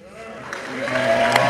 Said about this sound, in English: And then the clapping goes on, but of course, after the clapping, we do hear some from you know, the folks.